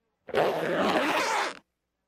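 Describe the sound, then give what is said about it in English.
A single long zipper pull on a pair of pants being zipped up, a raspy ratcheting sweep lasting just over a second, fairly loud, with no voices. “My pants seem to be on backwards. Could you zip me up?”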